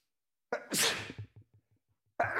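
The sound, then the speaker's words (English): A single loud, explosive sneeze bursts out, followed by a few quick wet sniffles and breaths that fade, then another sharp noise starts abruptly at the very end. “Bless you.”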